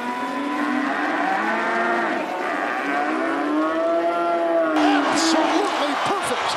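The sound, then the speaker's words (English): A cow sound effect: cows moo in long, drawn-out lows that rise and fall in pitch, several calls overlapping loudly for the whole stretch, with no pause between them. “Well, I want the listeners to know that if in the first minute of this podcast there were three drops, one of booing, then cheering, then of cows”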